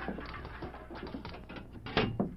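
A jail cell door lock is worked open by the turnkey: a run of small metallic rattles and ticks, then two sharper, louder clanks near the end. No one speaks.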